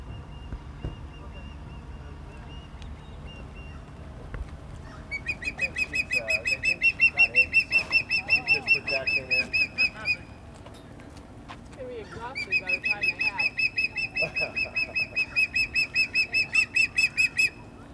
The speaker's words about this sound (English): And here at the marina, there's an osprey that has built a huge nest on the edge of a bridge. You can walk right up to it, within 10 feet of the actual bird, but from below.